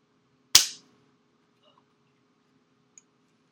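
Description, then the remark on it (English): One loud, sharp hand clap with a brief ringing tail, followed by quiet and a faint small click a few seconds later. No one speaks. “I'm gonna clap.”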